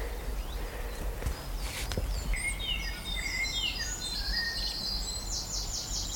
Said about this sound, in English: All the birds just coming in, flying around me. Chiff chaff, black cap, robins, dunnocks. There's a nuthatch there. Weep, weep, weep, weep.